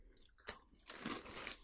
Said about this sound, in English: I'm just gonna giant bag of snacks. I'm just gonna munch on these. These are hot take. Not that I've had every kind, or even that many. These are the best Cheetos I've ever had.